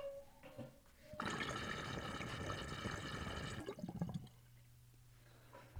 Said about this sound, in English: I love how much the water bloops on the King Bub, though, because of the way the discs are stacked like that and the way it sounds.